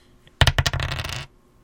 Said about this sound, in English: Now, what I did is I wrote a number by each of the people that had the correct answer on a piece of paper, and I'm going to roll my handy dice from my role-playing times.